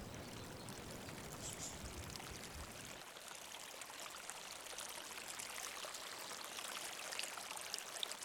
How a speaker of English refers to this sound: This is the sound of 29.8 gallons of water as it enters my garden through the hose that leads to the river and leaves my garden through the earth.